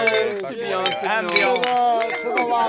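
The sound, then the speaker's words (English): Beer glasses clink together in a toast, several bright taps, mixed with overlapping voices of a small group chatting and laughing. “You want to cheers? Cheers. Cheers.”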